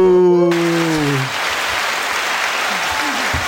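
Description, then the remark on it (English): A crowd bursts into loud, steady applause that fills the whole moment, with a sustained cheering whoop riding over the clapping at the start before fading out. “So hold y'all applause to the end, okay?”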